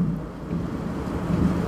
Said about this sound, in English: But the last thing, oh, there's the thunder. Pretty cool, huh? I hope you get to hear that one.